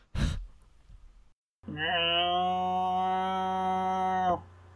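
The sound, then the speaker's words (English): A person imitates a cow: after a sharp breath, a single long, steady moo is held for about three seconds in a low, buzzy voice, then stops abruptly. “I love your cow. You do the best barnyard animal sounds.”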